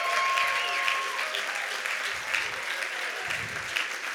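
A roomful of people claps steadily for several seconds, with cheers and whoops rising through the dense applause, all fairly close and loud.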